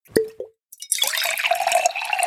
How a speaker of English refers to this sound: Hey, would you guys like to taste some of my wine? I would love to. Let's pour this, baby.